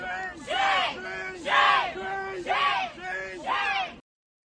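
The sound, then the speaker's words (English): A crowd shouts "shame" in unison, four loud, drawn-out chanted yells in a steady rhythm, forceful, with overlapping voices filling the gaps, as they mob a man walking across Harvard Yard and scream in his face. “They mobbed him, and they're screaming loudly in his face, shame, shame, shame.”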